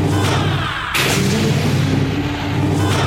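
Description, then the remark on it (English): A starship hailing sound cue: a loud, dense electronic wash over a steady low hum, with a sudden brighter burst about a second in that then sustains. No one speaks. “I opened up the hail bag with my sound cue.”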